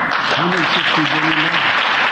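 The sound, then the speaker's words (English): A room audience claps steadily as they watch somebody suffering, a dense, continuous wash of applause that holds at an even loudness throughout, with a voice faintly audible underneath. “The most disgusting part is the room, how they clap and they clap and they clap as they watch somebody suffering.”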